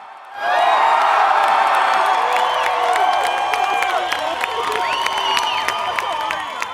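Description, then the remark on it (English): A large crowd bursts into loud, sustained cheering and applause, with whoops and high shouts rising over steady clapping that continues without a break, enthusiastic like a standing ovation. “Round of applause to you. No, standing ovation.”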